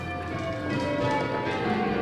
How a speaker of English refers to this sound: They lived in that house not far from the village of Pershore, where time is marked by the bells of a medieval abbey.